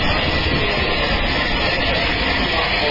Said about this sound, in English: And here's our train. 257 Squadron, Battle of Britain class.